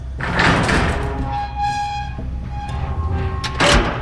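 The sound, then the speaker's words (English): A large, heavy metal door with a rusted handle at the end of a hallway is pulled and creaks open with a drawn-out, high, tonal groan, framed by a clunk of the latch at the start and a dull thud at the end. Fairly loud, no voices. “I pulled, and it creaked open.”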